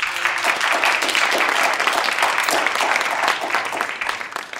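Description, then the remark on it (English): An audience breaks into sustained applause thanking Penny Sharpe after a 100 Climate Conversations talk, a dense, steady wash of many hands clapping that holds strong throughout before easing slightly at the very end. “Please join me in thanking Penny Sharpe with a round of applause.”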